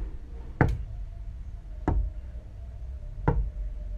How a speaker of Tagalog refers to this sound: Tapos may narinig akong katok. Hindi kasing bilis ng kay mama. It was slow and heavy.